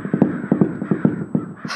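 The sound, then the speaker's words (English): A mass of crows caw harshly and repeatedly in quick, uneven bursts, loud, as the birds crowd against the outside of a house trying to find a way in, ending with a brief hissing rush. “The birds. They're crowding against the outside of the house. They're trying to find a way in.”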